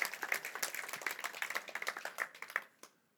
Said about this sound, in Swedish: Jag tycker han är värd en applåd faktiskt.